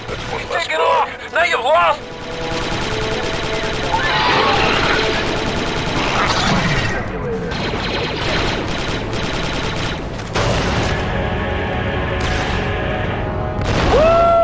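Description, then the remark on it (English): A dense battle soundscape of rapid gunfire and blaster-like shots as Delta Squad fights Geonosians, with a loud explosion bursting through and rumbling debris, while voices shout faintly beneath the constant noise. “3-8, my scanners show an explosion.”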